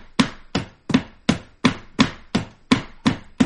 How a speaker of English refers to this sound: Come here. I'm knocking the dust out of my keyboard, man. I told you I was going to be cleaning that shit.